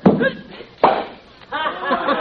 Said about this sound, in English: Hey, was that a cork popping? No, that was bubble gum. Oh? That means you did as well as a 10-year-old boy.